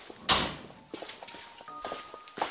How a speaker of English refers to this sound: kindly shut the door behind us.